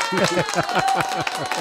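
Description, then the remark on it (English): A light smattering of hand claps greeting a guest, moderately loud, with rapid uneven bursts running throughout, mixed with a faint steady tonal hum in the background. “I love a good smattering of applause.”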